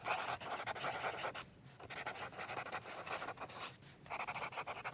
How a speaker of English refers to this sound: Let me write that down real quick.